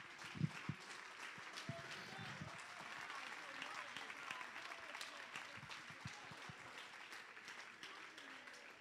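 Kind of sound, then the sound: crowd, audience clapping in praise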